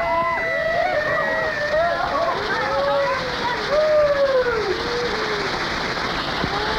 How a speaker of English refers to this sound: Excitement, two at once. Oh boy. There you have it. Yeah, you talk about your cheap thrills. I've just had it. A live fireworks demonstration, bigger than you'll see at the Coliseum or anywhere else for that matter.